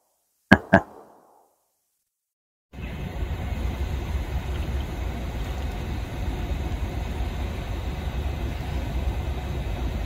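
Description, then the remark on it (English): Two sharp clicks, a brief silence, then a kettle put on for a warm-up starts heating with a steady, rushing roar that holds evenly to the end, with no voices present. “Right, kettle on, warm up time.”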